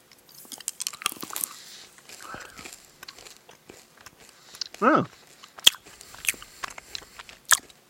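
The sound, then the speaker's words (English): Wet, crunchy chewing of two sour cherry Skittles candies with irregular bursts of mouth noise and a few sharp clicks, plus a brief falling vocal sound midway, with no clear words spoken. “Okay, so, 2 sour cherry Skittles. Yep. All right, bottoms up.”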